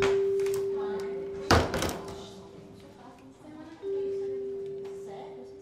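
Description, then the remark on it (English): A door opens from a hallway with a single solid thunk as a man walks in, while a steady electrical hum runs underneath and faint muffled voices murmur in the background. “When the door opens, he walks in.”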